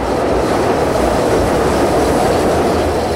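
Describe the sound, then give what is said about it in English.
A loud elevated CTA L train in Chicago rumbles past on its tracks, a dense roar of wheels on rails with a steady clickety-clack rhythm filling the whole stretch, no voices. “What it's like to live next to the CTA's L train tracks.”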